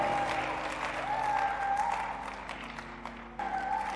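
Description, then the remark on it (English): An audience claps steadily and loudly throughout, dense overlapping hand claps while raised voices call out and shout above the applause. “And somebody clapping your hands and shouting, that anointing is upon you.”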